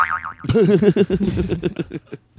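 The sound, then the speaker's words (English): A cartoon boing sound effect: a high warbling twang gives way to a loud, wobbling springy tone that breaks into quick bouncing pulses, fading over about two seconds with no talking. “You say it again, and then you play the booing sound,”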